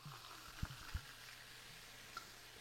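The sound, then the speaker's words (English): A steady soft crackling fizz of strawberry watermelon seltzer being poured into champagne flutes, quiet, with a couple of low dull knocks near the start and no voices. “I can't wait to pour it so that they can hear the ASMR of this.”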